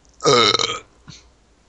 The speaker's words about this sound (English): I burp and you say, guess not.